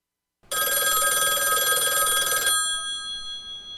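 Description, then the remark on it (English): A loud old-style telephone bell rings on the Spud Goodman Radio Show, a call from guest Anthony Edwards, in one sustained, rattling burst of about two seconds, then cuts off and leaves a shimmering metallic tone fading out. No voices. “Your last guest, Anthony Edwards, is on the line. Do you want to take the call now?”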